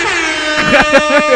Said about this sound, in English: that's for Will. The air horn.